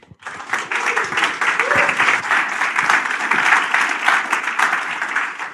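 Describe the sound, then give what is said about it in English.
Sustained audience applause for Lewis Bollard after his talk, a dense steady wash of many hands clapping at fairly even loudness throughout, with faint murmurs of voices mixed in underneath. “First, another round of applause for our friend Lewis Bollard.”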